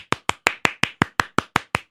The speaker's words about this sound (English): No, Cam's not going to play the applause for himself. Okay, there you go.